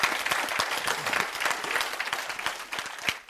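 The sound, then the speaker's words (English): A church audience claps steadily during a sermon, many hands striking in a dense, bright patter with scattered sharper claps standing out, sustained for a few seconds at an even loudness. “I'll wait while you clap.”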